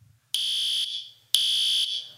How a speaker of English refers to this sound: Everybody made that same noise. Oh, because usually it's like 100 times louder than this. This is that fire alarm, right? It goes off and there's bright lights.